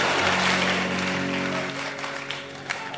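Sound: audience clapping hands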